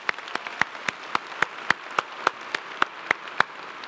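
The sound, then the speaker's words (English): A conference audience applauds all the day's speakers, a steady wash of clapping with sharp individual claps standing out in a quick, regular rhythm, sustained and even in loudness throughout, with no voices. “So I just want to have a big round of applause for all the speakers here today.”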